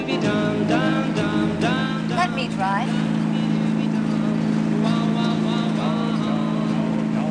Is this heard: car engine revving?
yes